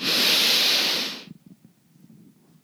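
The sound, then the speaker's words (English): A single long, loud breathy exhale out of the mouth, released after a held breath during a relaxation breathing exercise, rushes out for about a second, airy, then cuts off, leaving faint low rustling. “And then we're all going to take a huge exhale out of our mouths together and feel everything in your body just melt into your mat or your chair.”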